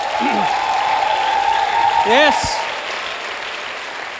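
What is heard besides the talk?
audience applause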